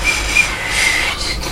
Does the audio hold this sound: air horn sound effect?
no